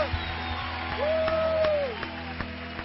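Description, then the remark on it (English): An audience claps and shouts hallelujah, scattered sharp claps over a steady crowd roar, with one long drawn-out shout ringing above it midway. “Come on, shout and clap hallelujah.”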